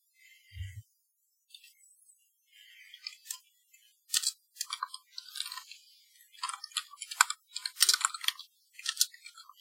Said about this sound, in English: Okay. Sorry, I'm typing my character up to post into the chat.